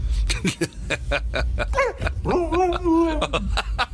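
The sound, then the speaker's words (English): A husky in a video being played lets out a rapid string of sharp yips and barks, then breaks into drawn-out, wavering howl-like calls, loud. “Get your dog and see their reaction. A husky.”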